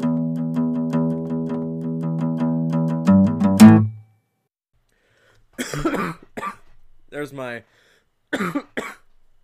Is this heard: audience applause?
no